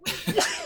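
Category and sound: human body sound, sneeze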